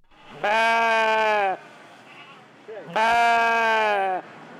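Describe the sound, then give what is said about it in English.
Two long, loud bleats from sheep or goats in pens at the Mesa County Fair, in a covered outdoor arena, each lasting about a second with a short pause between, over faint background noise. “The sheep and goats, pigs and cows have no idea the strange times we're living through.”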